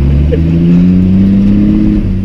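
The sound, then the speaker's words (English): A car engine revs loudly and steadily, its deep droning tone rising slightly in pitch over about two seconds with no voices present. “What a stupid car.”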